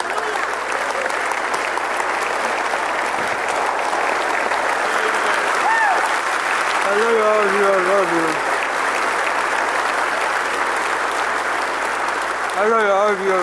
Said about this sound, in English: You couldn't hear that because they were clapping.